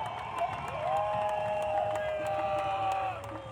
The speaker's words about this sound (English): Big round of applause.